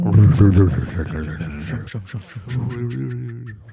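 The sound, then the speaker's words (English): Several voices imitate a low, thrumming mechanical engine noise, droning and buzzing in uneven, rumbling bursts that swell and fade over a few seconds. “It's very interesting that we're all making like thrumming noises.”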